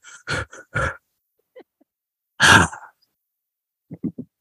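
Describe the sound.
A voice imitates heavy, ragged breathing: two quick huffs, a pause, one long loud exhale, then a few soft, shaky breaths at the end; heard in a described game scene as the camera zooms back through a door and pauses.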